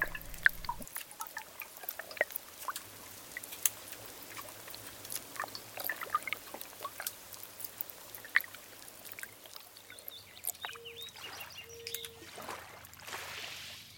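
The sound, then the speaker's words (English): Quiet river water trickling and pouring, with scattered drips and splashes over a steady low hum, continuous throughout with no voices. “Soak in the sounds of a river with this composer’s sound maps”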